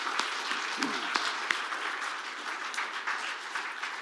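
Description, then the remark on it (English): A crowd applauds steadily for visiting missionaries for Ohio, a dense patter of many hands clapping at an even level for several seconds, with a faint voice briefly audible beneath it. “Give them a big round of applause as well.”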